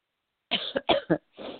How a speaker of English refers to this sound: Excuse me while I cough, just a cough. Sorry. I swallowed wrong.